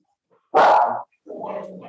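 A dog from Florida barks: one loud, sharp bark, a short pause, then a second, lower and softer bark that draws out longer. No one speaks.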